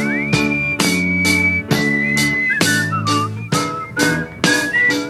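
person whistling a tune

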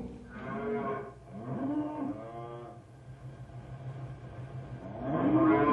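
cattle mooing

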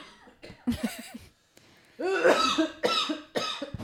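coughing

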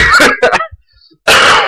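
a little cough

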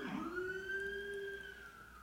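police car siren passing

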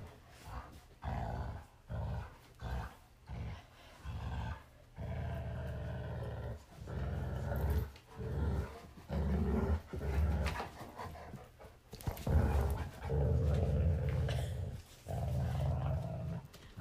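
dogs growling and barking

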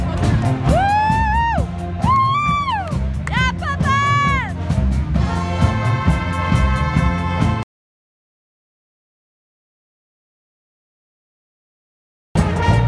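crowd cheering

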